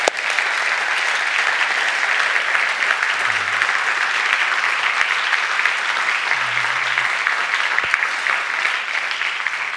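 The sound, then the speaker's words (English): A crowd applauds steadily for nearly ten seconds, a dense, even wash of clapping at constant loudness with no pauses. A couple of faint low tones briefly surface beneath it. “And I just want us to give them a round of applause.”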